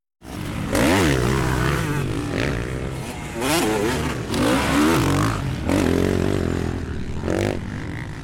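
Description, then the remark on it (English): A motorcycle engine revs up repeatedly as its rider gets on, loud throttle bursts rising and falling in pitch with a rough, rumbling idle between them. “As the horseman gets on his motorcycle”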